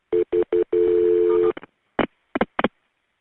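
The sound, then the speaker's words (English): A telephone line rings with steady electronic tones: three short beeps followed by one longer tone, then a few brief, sharp clicks and bursts on the line before it goes quiet, as a 911 emergency call is transferred to the ambulance line. “Let me connect you to the ambulance.”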